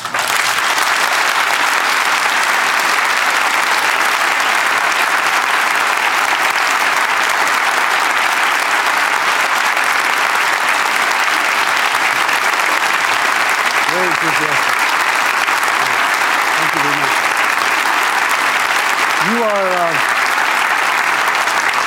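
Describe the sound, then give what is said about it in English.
Sustained, loud applause from an enthusiastic audience, a dense steady roar of clapping lasting the whole stretch, with a few brief voices calling out near the end. “Very enthusiastic crowd.”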